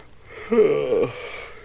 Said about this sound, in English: You got me yawning, too.